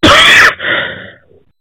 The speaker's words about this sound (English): As you can see, I'm coughing, and so you know it's some cool weather here in Dayton, Ohio.